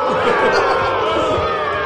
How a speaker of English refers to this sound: Okay. The boos are back.